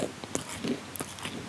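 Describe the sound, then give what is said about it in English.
Someone bites into crispy battered and fried food, with a few sharp, crackly crunches spaced irregularly over a second and a half, followed by soft chewing. No one speaks. “Okay, I'm going to go for it. Ready for the crunch?”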